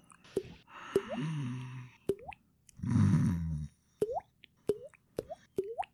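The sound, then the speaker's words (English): Water drips from the ceiling, plinking one after another at an uneven pace, each drop a clear, rising plop, with a couple of softer splashy bursts between them. No one speaks. “Tune in to Water Drops on Stitcher Premium. A new podcast by The Ceiling.”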